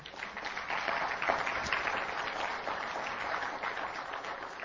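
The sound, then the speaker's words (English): A crowd applauds steadily, many hands clapping at once in a dense, even patter that holds at a fairly constant level throughout, with no voices standing out. “Yeah, it's worth a clap.”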